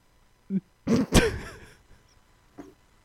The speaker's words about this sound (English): And he's like breathing like crazy, too. Oh, yeah. He dreams hard because he's chasing squirrels, dude. Oh, it's true. He's huffing and puffing.